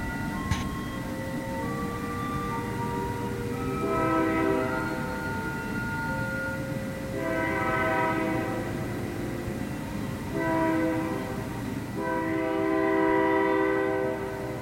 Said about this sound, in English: Weird, right? And then the trains try to play along with the instrument, it sounded like.